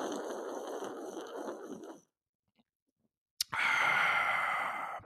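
Two airy, hissing slurps of someone sipping beer, each about two seconds long, separated by a short silence and a sharp click. Fairly loud, with no talking.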